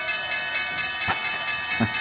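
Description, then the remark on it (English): The stock exchange opening bell rings loudly and continuously, a bright metallic tone with a rapid, steady pulsing beneath it, with no one speaking over it. “There's the opening bell, guys.”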